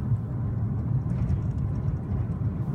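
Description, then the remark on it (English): A steady, low rumble of road and engine noise, like riding inside a car moving through traffic, continuous and even in loudness with no voices or distinct horns. “All right, well, since we've hit all this traffic, maybe it's time for another question.”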